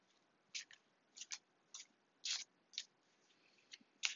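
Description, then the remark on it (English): A deck of tarot cards being shuffled while looking for a card to draw, heard as a quiet, irregular series of short, crisp papery swishes and snaps with brief pauses between them, and no one speaking. “All right, so as I'm shuffling the cards, I'm looking for a card that will pop out or have a general feeling of that's the card.”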